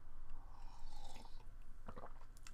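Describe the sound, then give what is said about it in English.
A quiet sip of hot coffee, soft slurping followed by a few wet mouth clicks and a swallow, with faint background hiss and no talking. “Take a sip of my coffee before we get this shit rolling.”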